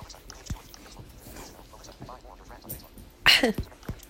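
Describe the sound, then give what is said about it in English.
Dogs growl softly while playing together, with low rumbling and scuffling throughout and a sudden louder burst of noise near the end. “They're just growling and playing with each other.”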